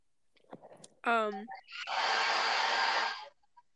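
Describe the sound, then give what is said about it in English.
A brief vocal sound is followed by a hair dryer blowing with a loud, steady whooshing roar for about a second and a half before it cuts off abruptly. “Someone's background noise is just this sounds there. Like a dryer. What? It sounds like a hair dryer.”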